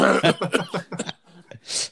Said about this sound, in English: watch that cough.